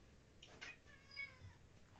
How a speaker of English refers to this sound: Sorry, the cat just cracked the shits and she's coming in and hunting me down.